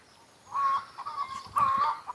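Hens behind a fence by an allotment clucking in two short bursts of nasal, tonal calls separated by a brief pause, clear against a quiet outdoor background.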